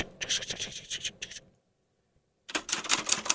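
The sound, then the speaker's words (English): A person at a desk in a dark room lit by one light types rapidly on a typewriter; keystrokes clatter in a quick rhythm for over a second, stop for about a second of silence, then resume in a denser, louder burst. “Dark room. Person. At a desk. One light. Typing out.”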